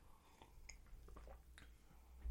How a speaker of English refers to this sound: I took a big sip of water as you asked me that.